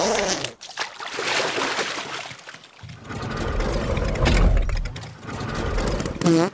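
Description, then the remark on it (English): The engine of the Guy-o-matic, a makeshift bathtub car on the move, runs with a rattling, churning mechanical drone that grows into a steady low rumble, loud and continuous, with a brief clatter near the end. “Guy-o-matic bathtub car on the move.”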